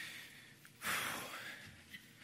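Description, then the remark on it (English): A person imitates a goldfish from an asthma commercial that has jumped out of its little bowl and is breathing, with one loud, sharp, breathy gasp that trails off, followed by a few faint breathy sounds, without talking. “The goldfish jumps out of the little bowl and it's sitting there and it's breathing.”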